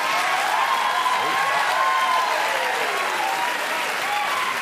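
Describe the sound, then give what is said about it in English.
A large audience applauds steadily, a dense, continuous wash of clapping with a few scattered cheers mixed in, holding at a fairly loud level for several seconds. “Do you remember how I was just talking about cheap, stupid applaud lines that people give when they're in it for the likes?”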